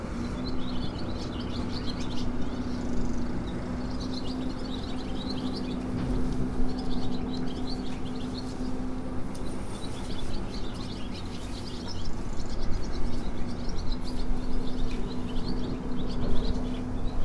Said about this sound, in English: I've walked down from St. Pedroc Church to the harbour at Padstow. It looks like the swallows are just about to leave for Africa.